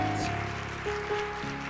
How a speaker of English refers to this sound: Give God a hand clap for his servants.